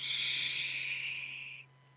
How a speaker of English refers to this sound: And let's breathe purposely, mindfully in through your nose. See how big you can make your belly? Bigger. And then out through your mouth. Like through a straw.